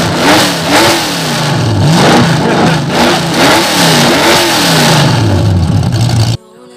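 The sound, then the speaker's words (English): A car engine revs loudly, its pitch climbing and falling in several repeated surges over a steady rumble, before the noise cuts off abruptly at the end. “Start the car and get shot.”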